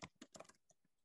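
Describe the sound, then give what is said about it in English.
A quick burst of typing on a computer keyboard as the name of the company Waterfall Gourmet Beverages is typed: several crisp key clicks in an uneven cluster over about half a second, then a couple of fainter taps before it falls quiet. Fairly quiet, no voices. “I'll type it here.”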